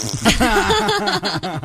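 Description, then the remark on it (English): A buzzy, drawn-out human fart with a wavering low pitch, sputtering in a string of quick pulses and ending in a few short, sharp pops, fairly loud throughout. “And here's fart number one.”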